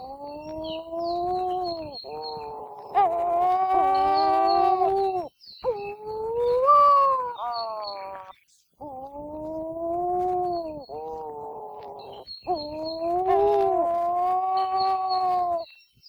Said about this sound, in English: The name Huaukani means calling or moaning petrel, and you can often hear these calls if you're lucky enough to live near a colony during their spring and summer breeding season.